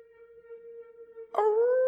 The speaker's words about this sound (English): We got a bunch of dogs out here.